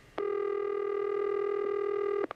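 A telephone dialing tone as a radio show places a prank birthday call: one steady, mid-pitched electronic buzz holding for about two seconds, framed by soft clicks at the start and end, with no one talking.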